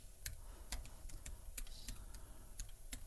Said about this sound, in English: I'm typing. I can't talk when I type.